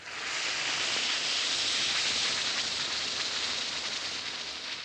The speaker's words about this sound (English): That's action in the glass. Yes, it's action in the glass, changing Alka-Seltzer tablets into the liquid form your system can use easily.